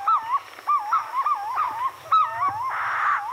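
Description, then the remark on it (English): Purple-throated fruit crows in a tree give loud, wavering, hooting whistles in quick succession at sunrise, several birds overlapping, with a faint steady high hum of other birdsong of the dawn chorus behind them. “In a nearby tree, purple-throated fruit crows add their voices to the sunrise chorus.”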